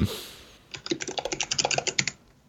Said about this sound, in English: You're gonna have to pause and edit out my ridiculously loud typing because I've got to see this now.